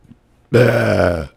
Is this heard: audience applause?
no